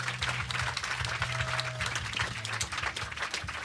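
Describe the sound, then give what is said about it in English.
An audience applauds as the next guest is introduced, many hands clapping in a dense, continuous patter that holds at a fairly even level throughout, with a low hum running underneath. “Give him a round of applause, though, first.”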